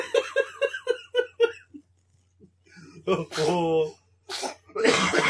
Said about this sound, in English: Bless you, buddy.